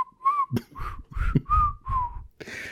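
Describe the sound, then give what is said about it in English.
A person whistles a wobbly, off-key tune in five short, sliding phrases, imitating the wind whistling in the trees, with breathy, gusty puffs of air between notes, fairly loud. “The wind whistles merrily in the trees. Unfortunately, it's only whistling ….”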